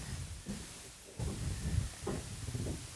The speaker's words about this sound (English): The fuck is that noise? What the hell is going on above us? God, this is what happens when you are live in the basement. There's someone knocking on the floor.